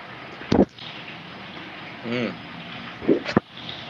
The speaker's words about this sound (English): Yeah, it's really loud. Is that water running? Yeah, it's in the background.